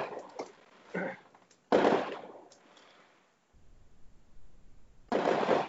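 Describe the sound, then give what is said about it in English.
Several sharp fireworks bangs and crackles go off outside, irregularly spaced with loud booms at the start and near the end, echoing with a rumble between them. “I just wonder where all these fireworks are coming from.”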